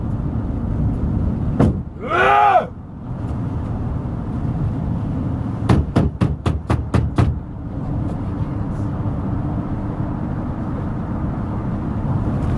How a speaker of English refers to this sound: So he beats the shit out of the truck. It goes on.